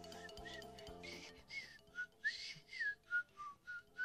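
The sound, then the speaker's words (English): Someone whistles a bright, bouncy TV theme tune in a series of short, clear phrases with sliding notes, moderately loud, with no talking. “And he immediately started whistling the song, and the bird started dancing, kind of bobbing his head to the theme.”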